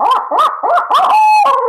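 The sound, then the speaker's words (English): A Ninja Owl locator call blown in a loud laughing sequence: four quick rising-and-falling hoots, then a high, shrill drawn-out note and a final wavering cry, then cut off quickly. No one speaks. “But then I do a laugh sequence and get loud and then shut it off real quick and listen.”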